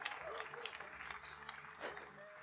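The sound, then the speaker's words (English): An audience breaks into steady applause for Tree Fort Music Fest and Duck Club, a dense wash of many hands clapping at once, with scattered voices and a few cheers rising over it throughout. “Clap for Tree Fort and Duck Club.”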